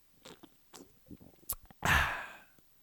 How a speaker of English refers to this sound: And before we get into that, I'm going to take a nice swig of Arnold Palmer, which I've got a nice little can right next to me. I'm going to take a quick sip of this.